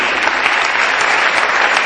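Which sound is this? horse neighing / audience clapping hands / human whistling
audience clapping hands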